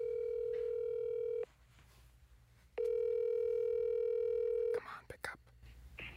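Ringback tone of an outgoing phone call to a cell phone: two long, steady electronic rings separated by a pause, fairly loud and clear, followed by faint rustling and clicks as the call connects.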